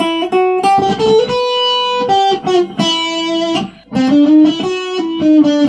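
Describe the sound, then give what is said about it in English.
A heavily distorted electric guitar plays a loud, sustained lead line with bent and held notes, its gritty, buzzing tone filling the space with no voices. “I'm going to give you some filthy, distorted distortion.”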